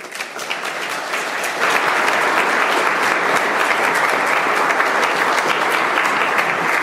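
A crowd bursts into steady applause, a dense wash of clapping that swells after the first second and a half and holds loud and even to the end, with no voices over it.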